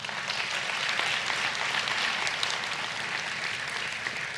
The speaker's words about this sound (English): If the ministry teams would come, why don't you give God a hand clap if you were blessed today.